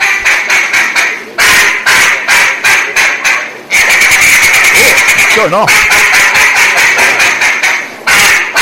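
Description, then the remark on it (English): Loud, rapid bursts of quacking from a homemade duck-call whistle repeat in a choppy rhythm for several seconds, harsh, with a brief voice heard among the calls. “So you have to make your own duck whistle.”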